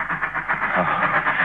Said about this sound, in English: Oh? Wait. Wait a minute. The train's slowing down. Something's wrong.